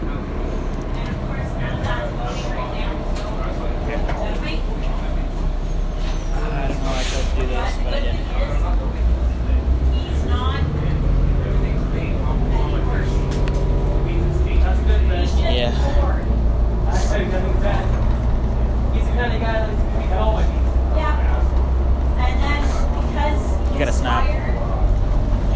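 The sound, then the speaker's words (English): Steady low engine drone and road rumble fill the inside of a moving city bus, with muffled voices and occasional rattles mixed into the continuous hum. “How long are we on this bus for?”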